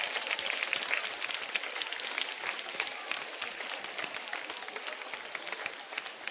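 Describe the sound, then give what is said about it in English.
A group applauds themselves, many hands clapping in a dense, even patter that continues throughout without pause, moderately loud. “Come on, give yourself a clap.”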